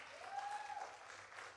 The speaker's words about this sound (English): Can y'all just give me a hand clap in the back?